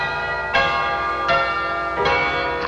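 Mission bells ring out in three evenly spaced, resonant strikes, each chime lingering and overlapping the next against a steady tonal background. The tolls are clear and fairly loud, with no voices.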